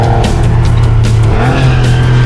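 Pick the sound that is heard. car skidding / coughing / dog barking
car skidding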